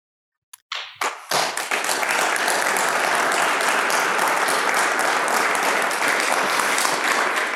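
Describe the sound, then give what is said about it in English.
Silence, then a few scattered claps quickly swelling into sustained, dense audience applause of many hands that stays loud and steady to the end, given to a speaker in the middle of a discussion. “In the middle of a discussion, you get an applause, and indeed you deserve it.”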